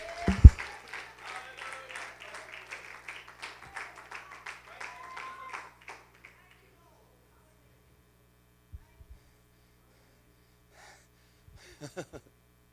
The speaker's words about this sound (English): Someone clap your hands to the Lord.